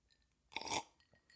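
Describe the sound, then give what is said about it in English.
A single slurp of a drink from a glass, a brief wet sucking burst lasting about a third of a second, with faint glassy clinks around it and no talking. “Sorry for the slurp.”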